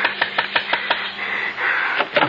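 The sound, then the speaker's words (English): A woman knocks on a door: a quick, even run of about six sharp raps, a short pause, then a few more knocks, with no voices. “I followed her up the gravel walk as quietly as I could and stood behind her as she knocked on the door.”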